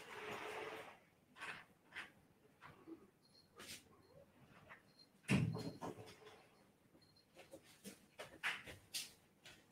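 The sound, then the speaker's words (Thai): A house door is unlatched and opened to let a child in, with a loud thud midway, scattered clicks and rustling around it, and faint whimpering in the background as the child cries to come into the house. “ผมขออนุญาตไปเปิดประตูรับลูกเข้ามาก่อนนะครับ”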